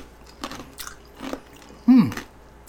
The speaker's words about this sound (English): crunch, ice, sorry.